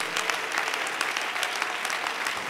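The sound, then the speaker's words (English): A church audience claps their hands unto the Lord during a morning service: a dense, continuous patter of many hands at an even loudness with no voices standing out. “Can you clap those hands with expectation?”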